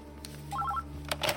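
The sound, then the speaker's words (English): A quick run of short electronic telephone keypad tones, about four or five beeps in rapid succession, followed by faint handling clicks over a low background hum. “Oh, where's the phone?”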